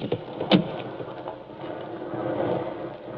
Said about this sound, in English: Good Lord, it's pelting with rain.